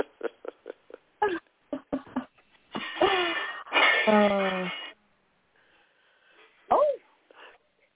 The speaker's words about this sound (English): It sounds like they're breaking up the kitchen in there. But it's, it sounded like metal. I didn't hear any glass breaking.